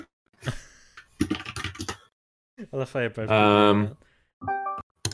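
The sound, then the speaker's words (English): Rapid clacking of fingers typing on a computer keyboard in short bursts as someone searches on Google, followed by a person talking. “Please ignore my keyboard sounds.”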